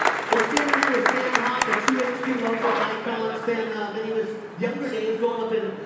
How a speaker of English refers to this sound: And can we just get a big round of applause one more time? Yeah! Woo!